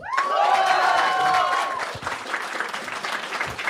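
An audience applauds with dense, steady clapping, and loud whoops and cheers ring out over it at first before the clapping carries on more loosely.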